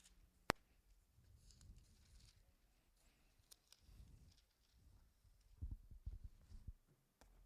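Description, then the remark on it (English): A faint, low electrical hum drones through the quiet, with soft low-pitched thumps and throbbing swells rising and falling around it and a sharp click near the start. “Yeah, I got a little bit of a hum coming through something.”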